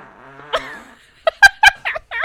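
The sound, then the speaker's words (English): A drawn-out, buzzy fart followed by a quick run of four or five short, sputtering blasts, loud, with no talking. “I don't believe you really ever have farted before.”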